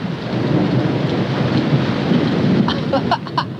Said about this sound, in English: you can hear the rain on the rooftop